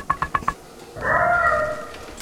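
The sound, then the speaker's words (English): A cat gives four quick, chirpy little trills, then a longer drawn-out meow, fairly clear against a quiet background. “Oh my, a fussy fuss cat.”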